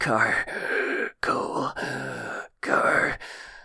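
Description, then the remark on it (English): A voice imitates Carcoal, a creature down on its haunches with its wheels sagged, breathing heavily and groaning: three drawn-out, strained moans with ragged breathy edges, separated by brief pauses, fairly loud. “with Carcoal down on its haunches, its wheels sagged, breathing heavily.”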